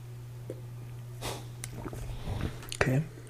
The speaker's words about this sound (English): Let me take another sip.